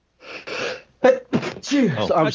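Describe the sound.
A quick run of sneezes: a breathy, hissing burst followed by several sharp, voiced outbursts in close succession, loud and uneven, with little pause between them.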